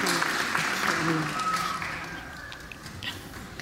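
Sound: church audience applause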